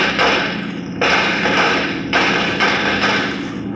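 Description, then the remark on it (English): A series of gunshots, four or five heavy, booming reports at uneven intervals, each a broad muffled blast that rolls away before the next. No one speaks over them. “We've heard all them shots, but ain't seen hiding the hair nobody.”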